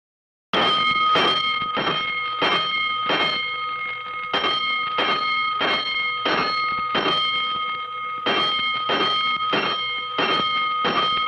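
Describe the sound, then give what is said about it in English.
A loud fire station alarm bell clangs in rapid, steady strikes, ringing continuously with a bright metallic tone that sustains between hits, starting abruptly after a brief silence; five bells sound for a five-alarm fire. “Five bells. Stand by all stations. Attention, all districts. A five-alarm fire.”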